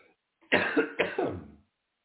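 coughing and throat clearing

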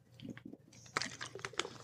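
drinking

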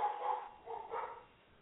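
dogs barking

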